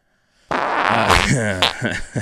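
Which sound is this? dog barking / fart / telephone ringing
fart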